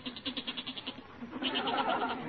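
A restless goat down in a cellar bleats in a quavering, rapidly pulsing cry that swells into a longer, strained bleat, heard alone at moderate volume with no voices.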